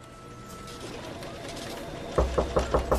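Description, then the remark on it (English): A quick run of about five firm knocks on Angel's door, evenly spaced, starting after a stretch of quiet, low background hum. “He's not answering his door, and there's, like, newspapers, like, covering the glass.”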